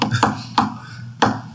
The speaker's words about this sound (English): You brought me to Bishop Magic Warren. Knock on the door like this.